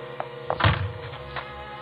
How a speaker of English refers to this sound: I could see his shadow on the frosted glass of the front door. In a minute, he tried the door. I didn't know whether it was locked or not.